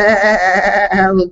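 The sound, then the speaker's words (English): A person does a loud, wavering goat bleat, one sustained quavering 'meeeh' lasting just over a second before trailing off. “He could have been a little goat, too.”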